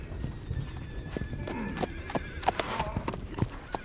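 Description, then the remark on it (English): Five horses with riders gallop up, their hooves clattering in a quick, uneven rhythm at steady loudness, while a horse lets out a high, wavering whinny partway through. “5 men on horseback rode up and bore down on him.”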